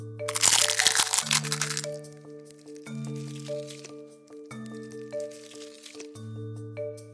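A garlic clove is crushed under a cup pushed down hard and wiggled to flatten it: a loud, crackling squash lasting over a second, followed by a few fainter crinkly grinding bursts, all over steady background music.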